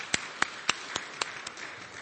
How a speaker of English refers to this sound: Let's give the choir a round of applause again. Thank you, guys.